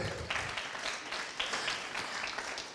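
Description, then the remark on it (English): A room full of people applauds the announcement that the all-church retreat returns in March 2022, a steady wash of many hands clapping at once, sustained through the whole moment with no voices standing out. “You can clap for that, too.”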